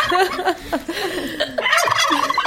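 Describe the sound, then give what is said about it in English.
Two turkeys gobble in rapid, rattling bursts, the calls overlapping one another across a couple of seconds, fairly loud, with no voices. “This is two lesbians. Two lesbian turkeys.”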